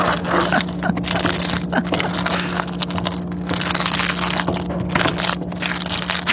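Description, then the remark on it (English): Cheese sauce for mac and cheese cooking on a stove in a home kitchen: a steady, dense bubbling and sizzling crackle fills the whole clip over a constant low hum, with no talking. “But if you thought we let Blake go without making him play us a recording of the sound of his cheese sauce, think again.”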